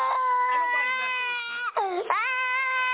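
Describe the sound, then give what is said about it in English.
A five-year-old boy held by police wails loudly in a sustained, high-pitched cry that wavers, broken by two quick catches of breath before the sobbing rises again, with no one else speaking. “When the boy doesn't stop crying, one officer screams just inches from his face.”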